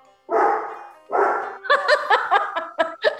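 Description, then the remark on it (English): A dog barks: two long, drawn-out barks followed by a rapid run of sharp, yappy barks, loud and unaccompanied by speech. “So I guess they didn't hear the keep the dog quiet.”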